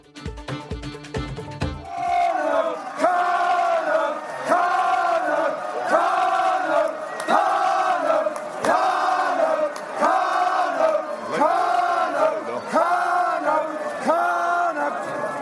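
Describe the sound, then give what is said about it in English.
A large stadium crowd roars and chants at a Connacht rugby match as a conversion kick by Leary goes between the posts, Connacht leading 14-7, with loud rhythmic surges repeating roughly every second and a half and no one speaking over it. “Leary just comes up now and straight between the posts. The crowd will tell you, Connacht leading 14-7, 20 minutes to go against 14 men.”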